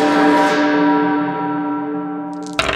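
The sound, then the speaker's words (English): A single loud church bell strike, for the casting of the Toll the Dead spell in a tabletop game, rings out and slowly fades over a couple of seconds, its rich tone hanging in the air before a burst of noise cuts in at the end. “I've got necrosis ready to toll decay. Chimes at noon.”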